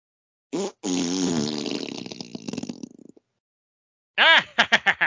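A long, loud, sputtering fart sound effect with wavering pitch lasts a few seconds, then after a short pause a burst of quick, punchy farting blasts follows, clear with no talking.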